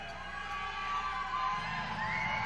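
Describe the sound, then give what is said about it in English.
A large concert crowd at a 1993 live show shouts and whoops in a steady roar as the singer banters with them, with individual cheers rising above the dense, continuous wash of voices. “… actually is kind of bantering with the crowd a little bit, and even in 1993, this happens.”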